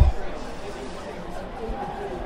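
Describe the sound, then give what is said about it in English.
A broad, steady wash of football stadium crowd noise at moderate level, with indistinct babble and murmuring voices blending into a continuous roar and no single clear words. “Wow, the crowd sounds really creep up in your unawares.”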